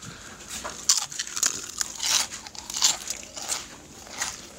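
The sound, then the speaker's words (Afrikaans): Crisp, bright crunching of Mexican chili flavored chips being chewed outside, with about half a dozen irregular bursts over a steady background hiss of wind on the microphone. No one speaks. “Ons eet Mexican chili flavored chips.”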